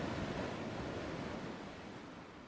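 Steady ocean surf rushes and washes continuously, a broad hissing roar of breaking waves, fairly loud and easing slightly toward the end, with no voices present.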